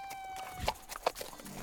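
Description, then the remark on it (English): A horse snorts twice in short, breathy bursts, with a few soft hoof thuds between them. A faint steady tone hums underneath and no one speaks. “This is a good horse. We could probably sell it at market.”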